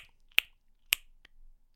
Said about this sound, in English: But how is it then that we make this clicking sound, this flash?